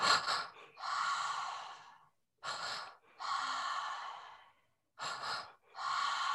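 Breathy cycles repeat three times in a guided breathing pattern: two quick sharp inhalations through the mouth followed by one longer, airy exhale through the mouth, each round separated by a brief pause, with no talking.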